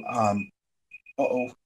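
A phone timer alarm goes off: a buzzy, harmonic chime, a brief pause, two quick high beeps, then the buzzy chime again, fairly loud.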